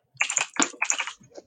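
A quick flurry of keyboard typing, several crisp key clicks bunched into short bursts with brief gaps between them, heard alone and fairly loud.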